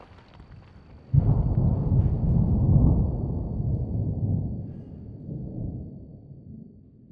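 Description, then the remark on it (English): A quiet background gives way to a sudden, heavy crack of thunder from an approaching storm. It becomes a deep, loud rumble that rolls on for several seconds and slowly fades. “There's a storm coming. I can feel it.”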